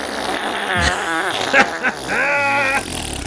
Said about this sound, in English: I'm glad that you're backing me up with the fart noises.